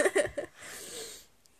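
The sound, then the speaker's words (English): A person imitates wheezy, asthmatic breathing: a few quick voiced gasps followed by a long, raspy airy exhale, with no words spoken. “And I like, if you breathe like that, have you got asthma? Like, he's breathing like this.”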